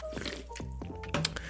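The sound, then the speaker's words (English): Someone sips Liquid Death sparkling water in the Severed Lime flavour: a short run of quiet wet slurps and small fizzy clicks, with a slightly louder gulp near the end and no talking. “I gotta take a second sip.”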